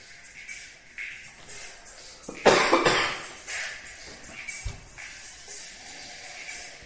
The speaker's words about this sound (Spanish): Perdón por la tos y por esta voz tomada en este primer programa, pero los aires acondicionados me están matando.